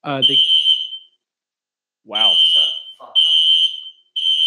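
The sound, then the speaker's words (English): A shrill, steady fire alarm in an apartment beeps in long repeated bursts, loud, with a man's voice speaking briefly over the first tones. “We have some fire alarms going off in the apartment.”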